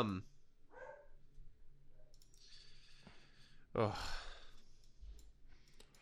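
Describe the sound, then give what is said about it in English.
Dogs outdoors give several short, sharp barks and yelps that pop up at irregular intervals, one louder burst near the middle, with breathy noise and faint background sounds between them. “The dogs, they crazy. they're loving it out there.”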